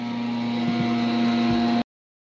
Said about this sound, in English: Oh, sorry about that. We got someone mowing the lawn and doing the bushes outside. all the windows are closed, but you can still hear it, guys.